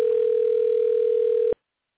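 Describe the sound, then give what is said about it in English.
A steady, unbroken telephone tone hums at one pitch for about a second and a half, then cuts off abruptly into silence. It sounds clear and fairly loud, with no voices. “And I'm getting a ringing in my ear.”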